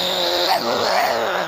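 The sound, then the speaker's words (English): A person growls like a wolf in one sustained, rough, rumbling snarl, fairly loud, lasting about a second and a half with no words. “My two boys circle him like a wolf.”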